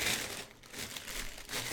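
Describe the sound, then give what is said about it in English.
Continuous crinkling of paper as the pages and cover of a notebook with a Voodoo for Dummies cover are handled, a dense rustling texture with small crackles throughout, no voices. “It's just a notebook, but the cover of it is Voodoo for Dummies.”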